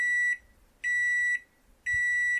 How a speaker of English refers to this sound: Is that a second microwave?